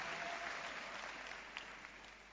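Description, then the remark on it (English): An audience claps together in dense, sustained applause for themselves that fills the space evenly and slowly tapers off, with no voices rising above it. “Clap your hands for yourselves.”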